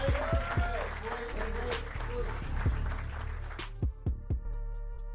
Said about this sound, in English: Joe, ladies and gentlemen, big round of applause for Joe Feisman. Thank you.